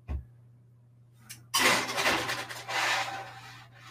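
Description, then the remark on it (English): A metal tray of salted taquitos clatters and scrapes as it slides into an oven, starting with a sharp clank and continuing as a rough, rattling rush over a steady low appliance hum. “And then I'm going to pop these puppies, not literal puppies, into my oven.”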